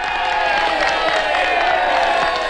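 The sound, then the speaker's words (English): A large crowd of citizens cheers and shouts continuously at a speaker addressing them, a dense, loud roar of many voices with scattered whoops rising above it, sustained without pause. “You're cheering me.”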